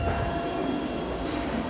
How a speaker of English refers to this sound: another train's arriving and that looks like it's going to be noisy.